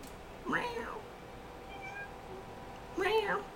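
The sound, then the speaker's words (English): A cat meows twice, each call a short rising-and-falling cry, about two and a half seconds apart. The calls are fairly clear over a quiet background hum. “Meow.”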